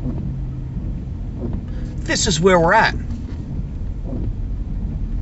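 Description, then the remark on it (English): A car horn blares for about a second amid a low rumble of traffic, fairly loud, honked by a driver stuck in traffic with nowhere to go, with a person speaking briefly around it. “as you hear that horn, and as I stand here doing a podcast in some traffic, a person who is right now stuck in traffic with absolutely nowhere to go is obnoxiously honking their horn.”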